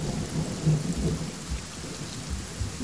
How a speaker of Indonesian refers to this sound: Hujan.